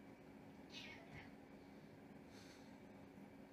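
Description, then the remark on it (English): Cats squabbling, with two short bursts of yowling and hissing a second or so apart, fairly quiet and set against a steady background hum. “Now the cats are fighting.”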